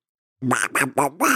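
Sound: cartoon duck voice imitation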